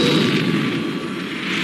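explosion

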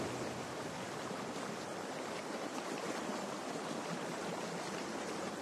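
stream water flowing

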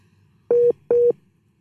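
busy tone

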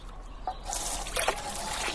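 water running

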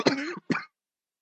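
coughing and throat clearing

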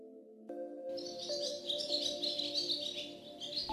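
small bird singing

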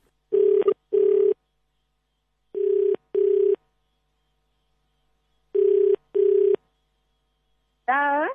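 telephone ringing

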